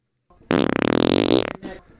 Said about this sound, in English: Those are my actual farts from an episode.